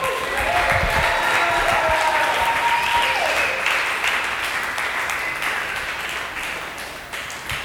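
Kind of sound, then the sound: crowd, audience applause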